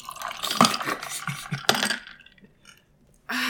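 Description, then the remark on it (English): Bright clinks of dishes and cutlery knocking together in quick irregular bursts, with scraping and rattling, pausing briefly before another clatter starts. “A lot of clinking going on here, guys.”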